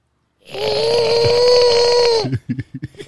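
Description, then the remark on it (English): A voice imitates a monster's growl: one loud, raspy, sustained roar held steady for nearly two seconds, then breaking off into a few short, choppy breathy bursts. “You want the monster? I gave you the monster.”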